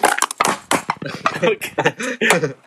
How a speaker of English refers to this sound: For the people that are listening, this man just crushed a can and slammed it against the table.